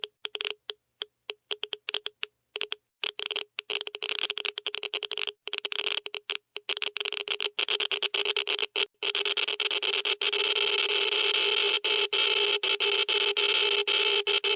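A Geiger counter sound effect, played from a soundboard, clicks sharply and irregularly, the sparse ticks speeding up into a dense, almost continuous crackle by the end, with no voices.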